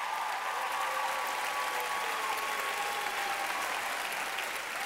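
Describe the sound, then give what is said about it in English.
A crowd claps steadily for the full five seconds, a dense, even wash of many hands applauding at moderate volume with no pauses or voices standing out. “Clap your hands like it's about to.”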